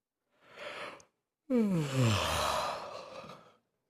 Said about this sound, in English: I just made some of you yawn. I'm sorry.